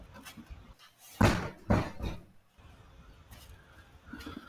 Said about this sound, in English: So I'm going to shut the door real quick, guys.